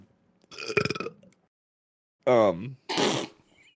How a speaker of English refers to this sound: So now the other three of these guys are obligated morally to put a burp in before they get their introductory say in.